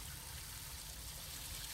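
Water runs steadily from a garden hose in a constant, quiet hiss and splash with no pauses, heard on its own without any voices.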